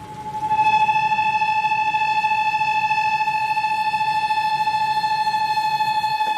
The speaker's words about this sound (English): It sounds a bit like a factory, but that's actually the whistle of a kettle on the stove. But it doesn't mean I'm going to get a cup of tea. There are two kettles here, one for humans and one for kakapo chicks, which that one is